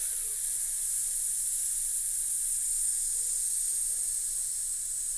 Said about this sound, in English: So you'd put your hands at the bottom of your rib cage, and you're going to take a really nice strong in-breath through your nose, making sure you're filling up lower lungs. And then with a hiss, just hiss and hold.